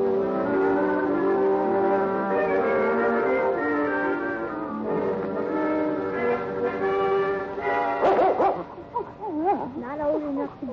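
dog barking and whimpering

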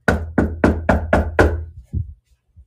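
knocking on a door

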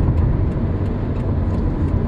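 car driving

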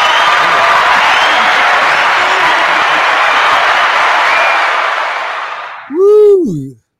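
audience applause and cheering

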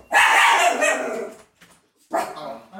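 dog barking

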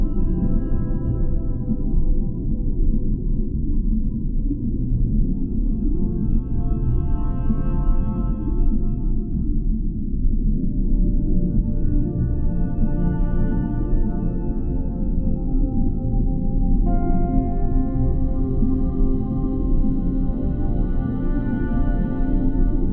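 whale song

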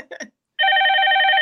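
telephone ringing

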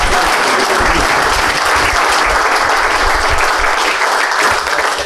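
audience round of applause

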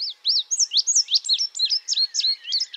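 indigo bunting song

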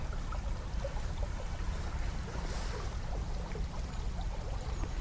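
river water flowing

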